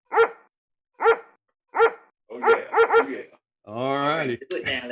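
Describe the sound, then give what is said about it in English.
A man imitates a dog with short, evenly spaced woofs, then a quick triple bark, followed by a longer drawn-out howling yelp, loud. “sound like a dog.”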